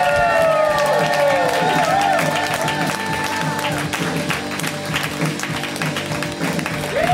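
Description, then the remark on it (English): An audience at a comedy show applauds and cheers steadily for the final comic, dense clapping mixed with whoops and shouts, while a few voices talk over the noise throughout. “Keep it going for”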